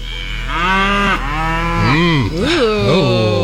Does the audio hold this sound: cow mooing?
yes